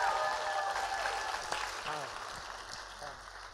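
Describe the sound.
An audience breaks into a full round of applause, a dense steady clatter of clapping that tapers off slightly, with a few indistinct voices or cheers mixed in.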